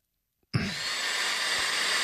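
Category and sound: household object, hair dryer running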